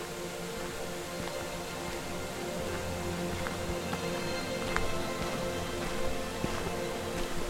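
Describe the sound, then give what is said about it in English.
A waterfall in a valley at Bodnant trickles in a steady, unbroken wash of water noise at moderate level, with a few faint taps and clicks scattered through it. No one speaks. “I can hear that waterfall trickling away in the background.”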